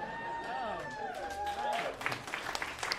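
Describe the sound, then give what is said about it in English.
A person does an impression of a tornado for an audience, a wavering, gliding howl for a couple of seconds, then a burst of applause and crowd cheering takes over. “it's up to you now to do your impression of a tornado.”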